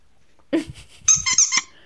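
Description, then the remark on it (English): A squeaky fox-shaped dog toy squeezed a few times in quick succession, giving shrill, wheezy squeaks with short pauses between them, no talking. “This is my dog's fox.”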